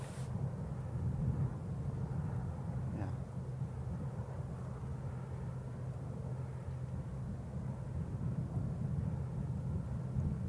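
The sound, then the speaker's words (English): A steady, low generator hum drones beneath a broad rumbling whoosh of 1.65-megawatt Vestas wind turbines, put up in 2012 by Epic Systems, turning, holding an even loudness throughout with no one speaking. “What you can hear is the general hum of the generator and the sort of swoosh, whoosh, whoosh of the turbines turning.”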